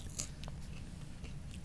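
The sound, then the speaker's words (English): Crunchy chewing of a KFC chicken sandwich with Cheetos and mayonnaise, with several crisp bites and crackling crunches spread across a couple of seconds over a low, steady background rumble, no one speaking. “Gotta get that extra crunch in mm-hmm.”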